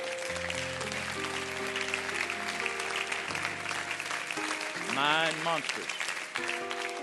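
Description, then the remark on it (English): Sustained applause from a large crowd clapping steadily for several seconds, with an organ or keyboard playing held chords underneath and a voice briefly rising over the clapping. “Clap your hands all over.”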